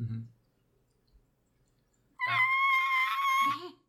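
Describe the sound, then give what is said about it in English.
A person imitates the cry of a Quetzalcoatlus-like creature: one loud, shrill, drawn-out screech lasting over a second, following a short low sound and a stretch of near silence. “It's not, you get the impression it's not quite screaming, it's just crying out to see what's up.”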